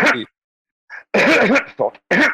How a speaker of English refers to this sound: Sorry, what? Had a cough there.